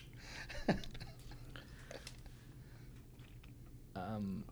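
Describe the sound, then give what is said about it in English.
A person chewing food with soft, irregular mouth clicks and smacks over a low background hum, then a brief voiced murmur near the end. “I can hear you chewing.”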